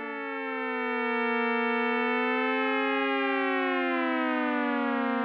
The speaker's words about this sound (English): You can start to see how this could all add up into a gentle, teeming cluster of tones.